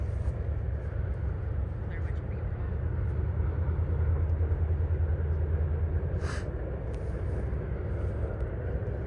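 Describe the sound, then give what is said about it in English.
A train rumbles past, a steady heavy low roar with a droning hum that swells through the middle and fades, plus a brief sharp clank near the end. “We gotta get the train again.”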